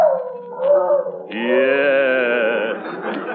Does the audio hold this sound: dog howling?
yes